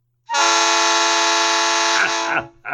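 A Nathan Air Chime P3 train horn blasts one long, loud, steady multi-tone chord for about two seconds before breaking off, followed by a short trailing burst. No one speaks.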